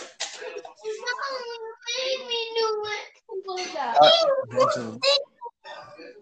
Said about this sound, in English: What happened? She's still crying about juice. You shouldn't have squeezed the juice, my dog. You squeezed the juice and it got on yourself.